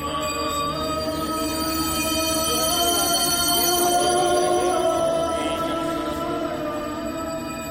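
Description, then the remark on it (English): Chants and prayers at some of India's most sacred sites, recorded and mixed by Hildegard Westerkamp: a dense, unbroken wash of sustained, droning vocal tones layered with bright ringing overtones, holding a steady, fairly loud level throughout. “Hildegard Westerkamp recorded and mixed these sounds, chants, and prayers from some of India's most sacred places.”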